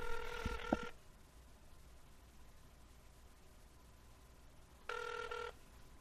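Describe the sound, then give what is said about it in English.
A phone call rings out over a speakerphone, two tinny, buzzing ring bursts separated by a few seconds of quiet line hiss, with no one talking. “Hey, keep the phone close to the mic.”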